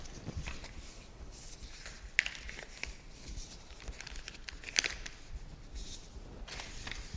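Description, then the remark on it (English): Sheets of paper being folded, with a steady soft rustle and crinkle and two sharper creasing snaps partway through. Quiet and continuous, with no voices. “At a performance I did recently, I had decided to fold sheets of paper like this in performance, rather than preparing them to be ready folded beforehand.”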